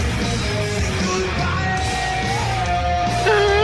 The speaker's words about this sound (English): There you go. Yodel. Sounds like a cantor.